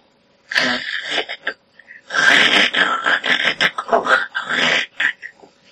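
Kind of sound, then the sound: vocal imitation, voice imitating snoring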